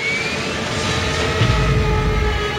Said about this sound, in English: In September of 1942, a plane carrying French and British military really did crash off the coast of Spain, killing everyone on board.